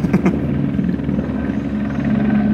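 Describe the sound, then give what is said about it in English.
An ambulance helicopter flying overhead: a steady, low rotor and engine drone holds at an even loudness for the whole stretch, with a faint pulsing hum and no voices over it. “It's an ambulance copter.”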